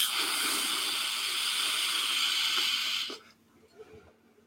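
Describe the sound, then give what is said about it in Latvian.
A steady, airy hiss of vapor from a vape device with its airflow fully open runs fairly loud for about three seconds, then cuts off into near quiet with faint rustling. “Teikšu tā, ar 30 latiem tīr pieklājīgs tvaiks no šitā te.”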